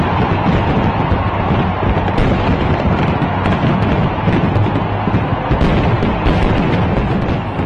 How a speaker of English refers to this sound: Rio de Janeiro had great fireworks to celebrate the new year, but then there are fireworks on many days in Brazil these days.